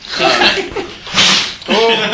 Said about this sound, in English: That was … sneezing. Hello, …. …'s been affected by the cold, as you can hear, you know.